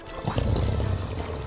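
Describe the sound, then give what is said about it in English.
Water pours steadily in a continuous, gurgling stream for about a second and a half, moderately loud, with a trickling, splashy texture and no voices. “You can see more trickles beginning to fall down Even now, the column of water that you swam down that pillar is beginning to empty.”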